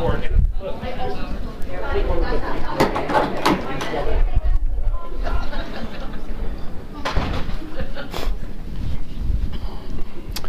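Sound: door being shut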